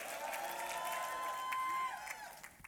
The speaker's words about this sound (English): Somebody clap your hands to the Lord tonight if you know you are here. Just add a shout to it.